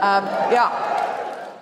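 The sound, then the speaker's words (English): An audience cheers and whoops, starting with a loud high-pitched voiced shout and fading into a wash of crowd noise over under two seconds. “People are cheering.”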